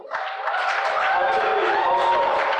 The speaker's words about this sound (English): Clap their hands for this worship team.